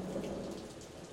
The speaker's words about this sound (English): Storm is picking up outside